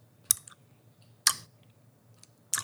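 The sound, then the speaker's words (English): Someone chews a wide, chewy Hi-Chew candy, making three sticky, wet smacking clicks spaced about a second apart over a quiet low hum, with no talking. “I guess a current taste for me because I'm chewing it.”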